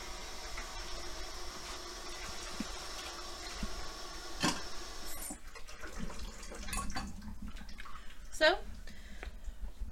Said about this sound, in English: Do not skip it. I don't know how much clearer I can be with that. Because, see, you're going to have little bits like this in there. So that's why you have to strain it.